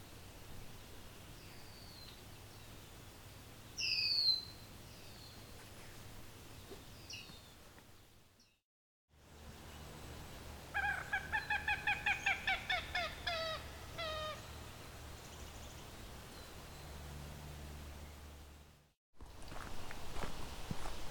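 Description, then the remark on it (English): A common gallinule lets out a loud, rapid series of harsh clucking calls from the marsh, with a few shorter squawks before it and a steady rustle of footsteps or movement underneath. “So we got a common gallinule, very loud marsh bird, a very, very loud marsh bird, not something I've really encountered much before.”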